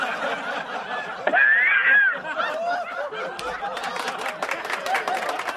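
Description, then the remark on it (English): A polite round of applause sound effect: scattered, light hand claps from a crowd mixed with murmuring and a burst of chuckling laughter, holding steady at moderate loudness throughout. “Yeah, middle class applause.”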